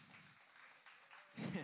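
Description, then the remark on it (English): Soft, scattered audience applause fills most of the moment, a diffuse patter of clapping, before a voice starts speaking near the end. “Applause is good.”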